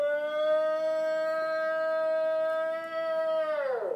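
A long, mournful howl of the kind often called the Ohio howl holds one steady, drawn-out pitch for several seconds, then slides downward as it fades. It sounds alone and fairly strong, with no one talking.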